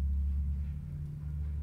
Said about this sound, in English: Be quiet, car.